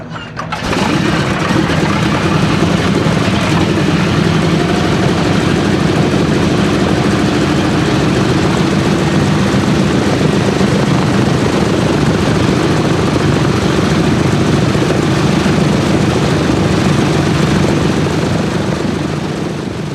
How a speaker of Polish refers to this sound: Tak właśnie grają silniki bombowca B-17 współcześnie na amerykańskim lotnisku w San Francisco.